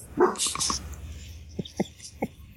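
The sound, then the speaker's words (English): A dog lets out a loud opening burst of barking, followed by three short, sharp barks spaced about a beat apart, with a low hum in the background. “The dog's barking at a fucking bite.”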